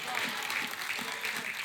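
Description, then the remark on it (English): A youth pastor claps in a steady, even rhythm, about five sharp claps over a constant background hiss, with no clear speech. “She's clapping because she knows how important this is to get into young people, because by the time they get to your age, you're not convinced anymore.”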